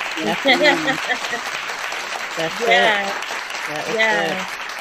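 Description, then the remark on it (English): A burst of crowd applause sound effect played from a soundboard button, steady clapping filling the background for several seconds while voices whoop and cheer over it in a few rising swells. “Let me find the applause button. We need an applause button for that, huh?”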